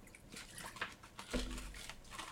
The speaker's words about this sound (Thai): เดี๋ยวขอจิบน้ำนะ ครับ